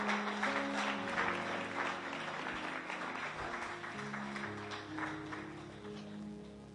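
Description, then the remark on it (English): A large church audience applauds and cheers steadily for several seconds for people who have come forward to pray, a dense, continuous wash of clapping with a sustained musical hum underneath, easing slightly toward the end. “Come on, folks, cheer them.”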